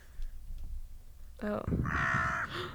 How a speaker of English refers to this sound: This is my little crow buddies on a windy day.